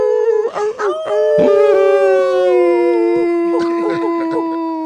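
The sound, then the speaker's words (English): A loud wolf howl rises and then holds a long, steady wavering note, with a few brief breaks at the start before settling into one sustained cry. “You know, can I get a howl?”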